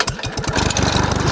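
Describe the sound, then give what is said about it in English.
A voice imitates a small dinghy boat motor starting up: a few sputtering low putts that quicken into a steady, rattling buzz, fairly loud, with no other talk. “Get a little dinghy boat going.”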